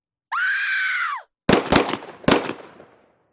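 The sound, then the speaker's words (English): A woman lets out a sustained, high-pitched scream for about a second. Moments later come three loud, sharp gunshots, each trailing off with a short echoing decay. “A woman began screaming.”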